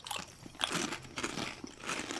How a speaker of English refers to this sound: Crunchy. I'm getting a lot of orange. Oh, it wasn't as strong as I expected it to be, which is a good thing. It just tastes like a really good crunchy chip. I'm not getting flavor blasted.